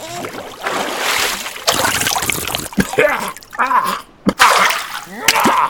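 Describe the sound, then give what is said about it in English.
Splashing and sloshing of ocean water in the middle of the ocean as it is scooped up to drink, with a few distinct scooping splashes and dribbles, broken by short pauses and brief vocal noises near the end. “You can't drink ocean water, you dumb fuck. Sure you can. Watch, you fucking idiot.”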